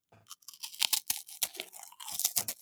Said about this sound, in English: So snack number one. I'm going to take it out of the bag, maybe to help you get more of a clue, but it's out. I'm crunching it now. It's going in.